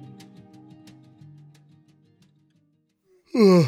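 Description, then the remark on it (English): A loud yawn swells suddenly near the end, breathy and voiced with a rising, stretched tone, following a few seconds of faint low background sound fading into near silence. “Sorry, guys, I'm yawning because if you know, we shoot these late at night.”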